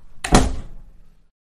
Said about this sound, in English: Zemi closed the door behind him.